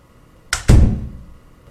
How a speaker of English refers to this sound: Why did you close and lock the door?